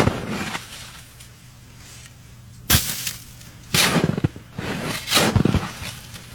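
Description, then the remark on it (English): A shovel scrapes through snow in three or four harsh, gritty strokes, each a short loud burst with quieter shuffling between them. No one speaks. “Shoveling snow. Yeah, shoveling snow.”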